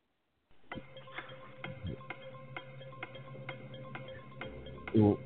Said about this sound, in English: Well, I'm gonna do the countdown clock.